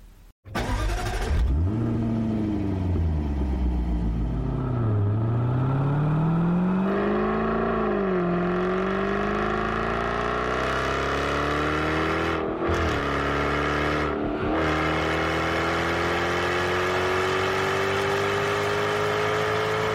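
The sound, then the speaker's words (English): A powerful F-Type R sports car engine revs hard, its pitch dipping and climbing through several throttle blips before a long, rising acceleration, loud with brief gaps at gear changes. “I should play the longer clip of the F-Type R just to remind everybody what a great soundtrack sounds like.”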